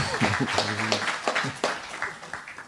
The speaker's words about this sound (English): Please, everyone, give him an applause.